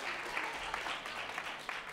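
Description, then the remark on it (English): A crowd applauds steadily, a dense wash of many hands clapping at once, fairly loud and continuous throughout with no voices standing out. “This is what, yes, clap. That deserves a clap.”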